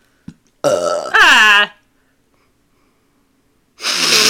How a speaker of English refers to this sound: Stop burping!